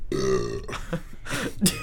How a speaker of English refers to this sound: At least when I burped, I like at least tried. After the first time, I was like trying to undo the burp.